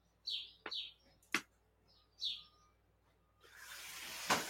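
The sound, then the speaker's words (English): A bird chirps outside the window in a few quick, high-pitched bursts, broken by sharp clicks, before a steady rushing hiss swells up at the end. No one speaks. “There's probably birds outside.”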